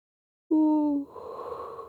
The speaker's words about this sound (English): Ooh, he yawned again.